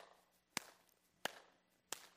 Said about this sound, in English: When she got saved, this is how she clapped.